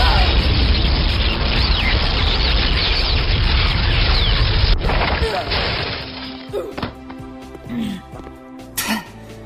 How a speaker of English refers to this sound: I just blasted her with lightning across the bloody room. And in case you've forgotten, this is a giant basement.